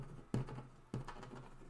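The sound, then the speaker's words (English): Two heavy thumps of a fist pounding on a desk land about half a second apart, followed by three faint, quick clicks of keyboard keys as someone writes something down. No one speaks. “That sounded like you pounded on the desk and then hit three keys.”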